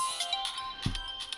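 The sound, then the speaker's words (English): A phone ringtone plays on its own: a quick run of bright, electronic melodic chirps at moderate volume, with a brief low thump partway through. “I do not take phone calls. I'm sorry. During episode.”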